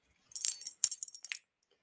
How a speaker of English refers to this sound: Okay, step one is that I'm going to take off Talusa's collar so that it's not jingling in the background. Because she's going to cuddle up right next to me and keep me warm.